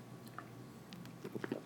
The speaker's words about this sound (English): Boom. Sorry for that lip-smacking noise, by the way. Drives me crazy in general, and drives me even crazier that I do it myself.